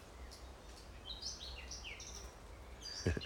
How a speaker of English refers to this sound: can you hear the birds?